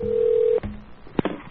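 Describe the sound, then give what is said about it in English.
A steady telephone dial tone hums for about half a second, cut off by a click, then a couple of short keypad beeps sound with no one talking, as someone dials to order more minutes on a phone card during a prank call. “I'm gonna order some more. Minutes in the phone card while we're at this.”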